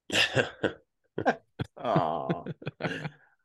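A close, loud fit of coughing and throat clearing in irregular bursts, with a few harsh hacks and a longer raspy, strained clearing of the throat near the middle.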